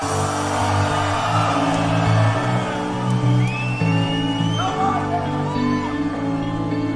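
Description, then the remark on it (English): A huge crowd at the Tomorrowland festival roars and cheers continuously, full of overlapping shouts and high rising whoops and whistles, loud throughout, with a steady low musical hum underneath. “Make some motherfucking noise for yourself.”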